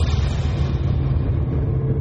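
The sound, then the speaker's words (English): A car engine rumbles steadily, a deep continuous drone with a faint rev as the vehicle pulls away, its brighter edge slowly dropping off. No voices are heard. “Get in the car, let's go.”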